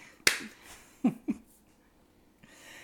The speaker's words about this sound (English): Take three. Clap.